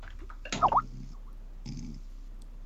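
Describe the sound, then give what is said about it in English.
Snoring: a rough, snorting breath with a short high-pitched whistly squeak, followed after a pause by a fainter, longer raspy breath. No voices are heard. “Oh my god, we've got snoring”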